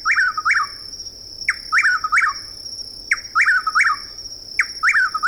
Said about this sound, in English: The same evening, in a southeastern woodland, we hear the loud calls of a chuckwill's widow.